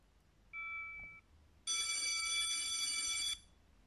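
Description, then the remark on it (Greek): A bell rings in two bursts: a short, thin ring with a couple of clear tones, then a longer, brighter ring full of layered high tones lasting nearly two seconds. No one speaks. “Το κουδούνι χτυπάει και μία κυρία μπαίνει στο γραφείο.”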